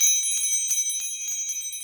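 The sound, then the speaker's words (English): Bright, high bells jingle continuously in a quick shimmering pattern, loud, with several steady ringing tones layered over rapid repeated strikes and no voices. “Hey, did you hear the bells?”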